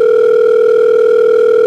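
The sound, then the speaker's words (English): A telephone rings for an incoming call with a steady, loud electronic tone that holds unbroken throughout, with no voices or other sounds around it. “A few minutes go by and she gets another call.”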